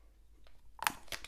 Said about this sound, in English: So I'm just going to give you a quick little snippet of how I feel about the film, what the conversation goes with of how we do it, as I take a sip of this water real quick, try and clear my throat.